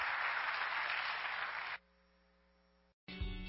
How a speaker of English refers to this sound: So since I can't introduce her because there's a video between us, can we just clap our hands